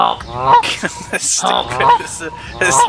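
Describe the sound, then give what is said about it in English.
Repeated loud, nasal goose honks from the video game Untitled Goose Game sound in quick succession, several harsh squawks spread across the few seconds with brief gaps between them, prominent. “Time has come to honk.”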